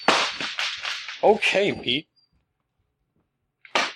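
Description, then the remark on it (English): A rapid series of sharp, rattling bangs from a German Shepherd slamming against its crate, loud, followed by a person speaking briefly, then silence and one more abrupt clatter. “Like, you guys hear a dog slamming against its crate.”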